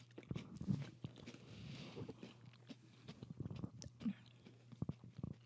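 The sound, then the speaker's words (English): Crunchy chewing of a mouthful of sugary cereal whose taste is compared to Captain Crunch and sugared Kix, with repeated sharp crackling bites over a low steady hum and no talking. “For me, it tastes more like someone just put a bunch of sugar on Kix.”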